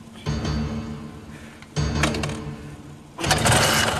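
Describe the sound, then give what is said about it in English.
A motorcycle engine revs loudly in three bursts, each surging up with a rough mechanical growl before easing back, with no voices. “And he starts revving it up.”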